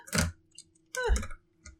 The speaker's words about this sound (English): I didn't want it falling of its own accord, so I pushed it down. It was almost done. It's my metal dice.